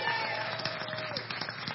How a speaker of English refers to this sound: Y'all clap for them, right?